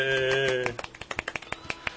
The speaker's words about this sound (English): Thanks, Chris, for putting it on. Yeah, Chris Niesman from Around Comics. Let's give him a little bit of a golf clap.